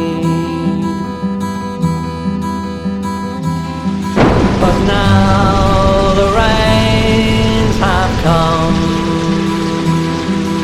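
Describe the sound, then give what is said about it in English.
A sustained tonal music passage gives way around four seconds in to a sudden, loud, dense roar of heavy rain, a downpour flooding Gormenghast castle floor by floor, pouring steadily to the end while melodic tones continue underneath. “A downpour never seen before, and Gormenghast is flooded floor by floor.”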